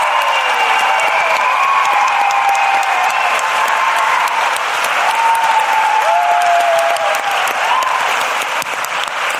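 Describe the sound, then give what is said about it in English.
Sustained audience applause at an Intelligence Squared event, for the speakers, the Intelligence Squared staff and the venue staff: a dense, steady roar of many hands clapping with faint cheering and whistle-like tones rising above it, loud and even throughout. “Finally, please join me in giving a big round of applause to our speakers, the Intelligence Squared staff, and the venue staff.”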